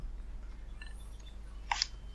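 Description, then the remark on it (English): A single brief clank of pots and pans being smashed in a kitchen by a woman, sharp and bright, rising once above a low steady hum, with fainter tinny knocks just before it. No one speaks. “My wife's smashing pots and pans in the kitchen just behind me.”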